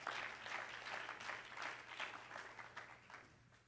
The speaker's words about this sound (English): Well, one more time, clap your hands as Pastor comes to the pulpit in Jesus' name.